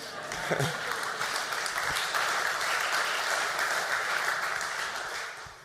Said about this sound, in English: And I know why you're clapping.